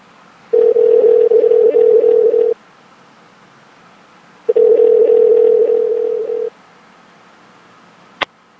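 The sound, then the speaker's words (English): Two long, steady telephone ringback tones, each about two seconds with a pause between, heard over the line on a call placed for an interview, followed by a sharp click as the call connects to voicemail. No one speaks. “it's Tom and Derek calling in to do your interview, so give us a call back”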